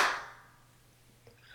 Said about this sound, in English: Okay, well, I'm recording now. I am recording now. Do you want to clap? Okay. Yes, let's go ahead and do that. One, two, three.